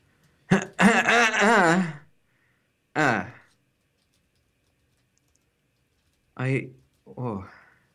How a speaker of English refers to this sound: Hello? I was waiting for you to say something. You sounded like you were clearing your throat.